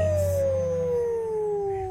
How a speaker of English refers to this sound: The Wolf.